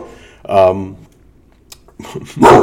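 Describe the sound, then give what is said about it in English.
A dog barks twice, loud: first a full, tonal bark, then after a short pause a harsher, noisier one, warning people who are on its territory. “Anyway, the dog was letting people know they're on the people on his territory.”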